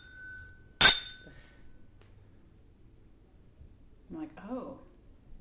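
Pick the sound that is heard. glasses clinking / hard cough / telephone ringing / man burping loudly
glasses clinking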